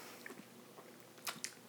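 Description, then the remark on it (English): Quiet mouth sounds of someone sipping an 11-year whiskey: two brief wet slurps near the end, with no talking. “as I sip one more time.”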